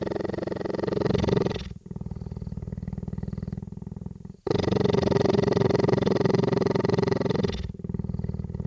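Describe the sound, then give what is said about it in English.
Loud purring of a huge cheetah weighing about 180 pounds, in long continuous rumbling bouts, alternating between slightly different tones with each breath cycle, steady and deep throughout. “I recorded the cheetah, the huge and very kind cheetah cane.”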